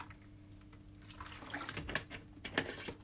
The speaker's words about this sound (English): Sorry, I need to have some water.